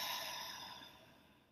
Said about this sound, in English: Again, nice deep inhale through the nose. And exhale through the mouth.